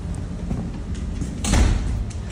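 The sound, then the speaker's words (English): The door of a new home for a pit bull named Miss Peaches is opened with one short burst of scraping, rumbling movement partway through, set against a steady low background rumble; nobody speaks. “Yes, let's see if the doors are open. It is.”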